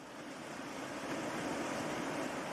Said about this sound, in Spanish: La barca continúa su camino ascendente y supera un pequeño salto de agua.